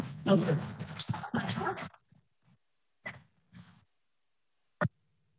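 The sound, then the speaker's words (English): A dog makes noise: a couple of seconds of loud, excited whining and yelping, then a few short, separated yips and one sharp bark after pauses. “I have a crazy dog situation over here”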